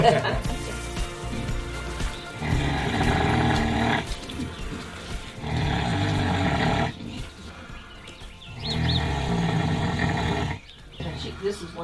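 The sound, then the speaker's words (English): A mother pig with piglets snoring: three or four long, loud, rasping low snores in a slow, steady rhythm, each lasting a couple of seconds with brief quieter gaps between breaths. “She's snoring.”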